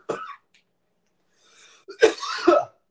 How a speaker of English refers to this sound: Love those first coughs.